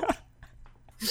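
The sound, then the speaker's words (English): A person coughs: a sharp, harsh burst at the start, a quieter pause, then another rough cough rising at the end. No one speaks. “Yo, I'm coughing here.”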